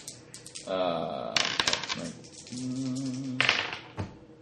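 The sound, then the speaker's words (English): Dice clatter across a hard tabletop in two quick bursts of rapid clicking, fairly loud, rolled for a dodge check against a punch, while people talk and murmur around the rolls. “those dice that Ross gave me”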